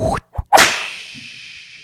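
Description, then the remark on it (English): A whooshing swing followed by a single sharp whip crack that rings out and decays slowly, with a long bright hiss trailing off into quiet. “Slow whip.”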